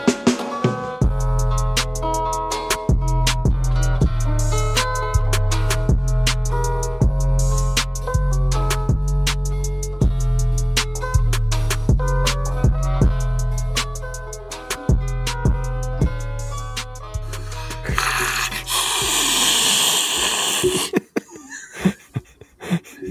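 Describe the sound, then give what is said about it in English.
A voice imitates an alien's hiss: a long, harsh, breathy hiss lasting about three seconds, loud and rough, coming right after a steady stretch of rhythmic music. “Is that white noise or your alien impression”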